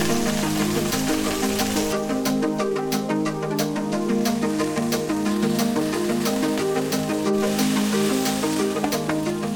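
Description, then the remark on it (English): Water is splashed into a hot frying pan of Asian greens, setting off a loud, steady crackling sizzle with sharp popping spatters that continues for several seconds, without any voices. “Splash of water.”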